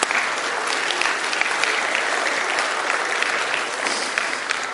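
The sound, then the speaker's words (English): A church audience claps steadily for several seconds, applauding the mothers present, a dense, even wash of applause that stays loud throughout with no voices standing out. “That deserves a round of applause.”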